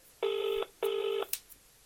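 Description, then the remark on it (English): Two steady electronic telephone keypad tones, each about half a second long with a short gap between, followed by a sharp click and a faint tick, as a phone is dialed to book a table at an Indian restaurant. No voices. “The phone just went a little bit funny there.”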